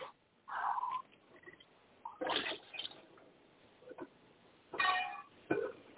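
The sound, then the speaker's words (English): Dishes being washed: bursts of splashing water and clattering come and go in irregular spurts, moderately loud, with quieter gaps between and no one talking. “Yeah, I hear the noise in the background. Somebody is washing dishes, cooking or something.”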